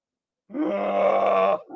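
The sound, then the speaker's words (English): After a short silence, a person lets out a loud, sustained, gravelly roar for about a second, imitating the screeching roar of Godzilla, then abruptly stops. “Well, that actually, so fun fact, that sound, the Godzilla roar.”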